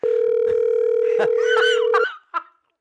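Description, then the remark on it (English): A steady, unbroken telephone dial tone hums for about two seconds while people talk and laugh over it, then cuts off, followed by a brief burst of voice. “I dialed wrong.”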